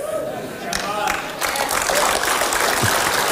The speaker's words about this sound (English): Okay, you see the people clapping?